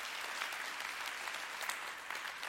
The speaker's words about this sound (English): Come on and clap your hands again one more time for that. Thank you, Heartland.